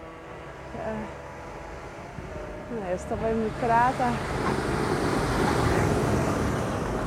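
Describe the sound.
A tractor's rumbling engine grows steadily louder as it approaches and passes by outdoors, building into a broad, rough roar. A person speaks briefly before the machine noise takes over.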